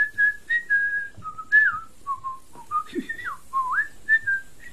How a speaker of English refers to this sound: Then he set off for home, whistling a happy tune.